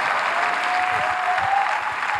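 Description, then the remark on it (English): An audience claps their hands together, a dense, steady wash of applause for a couple of seconds with no voices standing out. “Clap your hands and say, I'm not gonna faint before I reap.”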